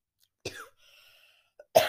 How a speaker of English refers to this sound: I don't know why I keep coughing.